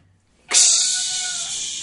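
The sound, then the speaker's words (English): A cat lets out a single loud, drawn-out meow, starting abruptly and holding steady for over a second with a bright, tonal whine. No talking. “Hey, there's a cat in here.”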